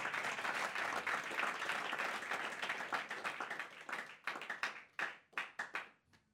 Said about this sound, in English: Praise God. That clap was for me. Clap for Jesus.